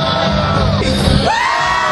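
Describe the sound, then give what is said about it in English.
A dense, steady roar of a concert crowd in front of the stage shouting and whooping, with overlapping voices and a rising whoop cutting through the loud, continuous din. “And we're in the middle of the crowd right in front of the stage”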